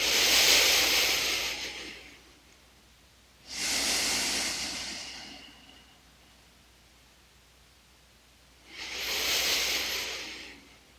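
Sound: slow deep breathing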